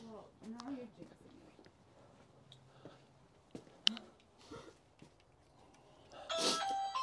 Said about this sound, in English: So here's the house, beautiful house. And we are in Needham, Massachusetts. We're gonna ring the doorbell.